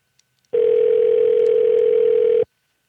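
A single long telephone ringing tone, a steady, loud, mid-pitched electronic hum that holds for about two seconds and then cuts off, with no voices.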